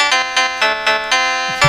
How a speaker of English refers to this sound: Scott Lyons, Hall of Famer, says to Angelina Chung, "Is that your ringtone?" I was like, "No, that's not a ringtone, Lyons."